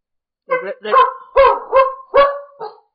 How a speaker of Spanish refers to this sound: Eso que oyeron precisamente fue nuestra perrita que el día de hoy está queriendo participar en nuestro podcast.